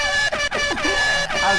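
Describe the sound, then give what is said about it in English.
A loud, steady truck horn blares almost continuously, with a few brief breaks in the tone, while a voice talks over it. “Beep, beep, beep, beep, beep. You say big old truck.”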